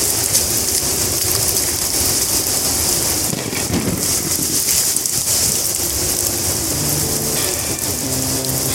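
rainstorm

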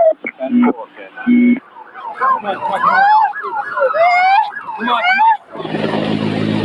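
emergency vehicle sirens

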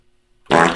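fart sound effect

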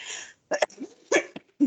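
coughing

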